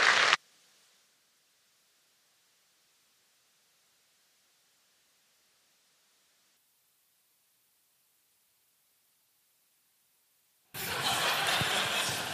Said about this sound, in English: So as he comes up, why don't we welcome him and say welcome to our applause.